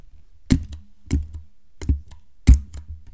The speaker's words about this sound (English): POV, you're smashing my numpad's enter bar.